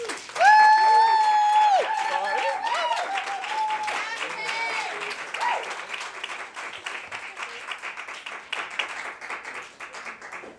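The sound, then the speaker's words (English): An audience at an open mic event bursts into sustained applause for a performer, with a loud whoop or whistle over the first couple of seconds, then steady clapping that gradually thins and softens. “A booming round of applause for Kate, please.”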